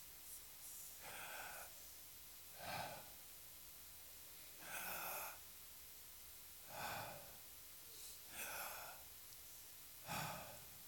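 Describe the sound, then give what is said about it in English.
Slow, deliberate breathing in and out, with about six soft airy breaths spaced roughly two seconds apart, fairly quiet, with no talking. “In fact, if our history shows us correctly, the first name of God was not a name at all. It was the sound of breathing.”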